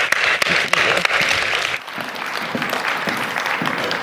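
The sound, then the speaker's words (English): An audience at a church service breaks into a round of applause, a dense wash of many hands clapping with a few sharp louder claps early on, easing slightly after about two seconds but continuing steadily to the end. “Can we give her a big round of applause?”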